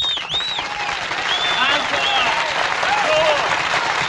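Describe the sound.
An audience applauds, dense steady clapping holding at full strength for about four seconds, mixed with cheering voices and a few high, sliding whistles.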